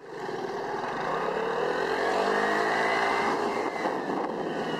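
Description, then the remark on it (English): A small rented Vespa scooter engine buzzes steadily as it is ridden round a tiny island off the coast of Ibiza, its pitch climbing as it accelerates, with a constant loud drone running through the whole stretch and no voices. “and you arrive on this tiny island, and when we arrived, we rented a small scooter, a Vespa, and we spent the day buzzing round the island on the Vespa.”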